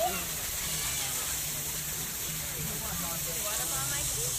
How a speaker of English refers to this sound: Get a pretty waterfall.